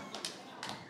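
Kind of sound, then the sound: crowd, a little applause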